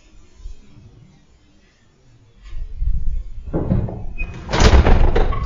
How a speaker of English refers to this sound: Sarah then asks Dorothy to shut the door that had been shutting earlier, and it slammed shut on command